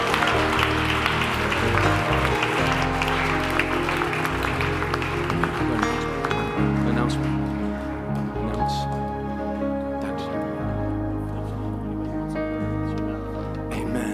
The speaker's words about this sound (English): Can you give the Lord a great big shout and a hand clap?